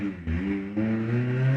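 A car engine revs outside a window as someone hot-rods it, its low droning tone climbing in pitch in two surges, holding steady and strong between them, with no voices.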